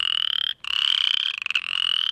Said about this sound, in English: Other frogs out in the lowlands, in the agricultural lands, you would encounter chorus frogs.